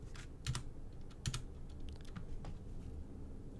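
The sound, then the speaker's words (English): Quiet, irregular clicking of keys as a man types on a computer keyboard, with a couple of sharper, louder key strikes standing out among softer taps, with no talking. “We hear him typing on click, his click, keyboard. Clickety clack.”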